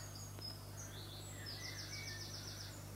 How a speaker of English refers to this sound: The bird song, the breath.